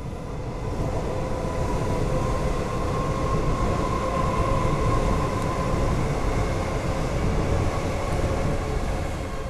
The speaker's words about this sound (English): Wait for this train to pass, please.